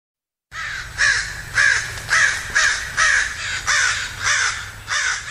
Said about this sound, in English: Welcome back to Forum. I'm Alexis Madrigal, and those are crows. We're talking about the crow invasion of Sunnyvale